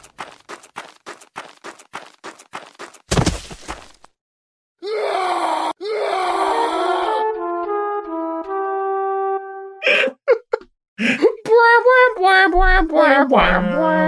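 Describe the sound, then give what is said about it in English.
In an audio drama, rhythmic footsteps and a sharp thud lead into a loud, anguished male scream, followed by a descending 'game over' womp-womp sequence of sustained tones and then more strained vocal sounds. “the juxtaposition between his blood-curdling scream and the Larry David-esque game over womp womp is amazing.”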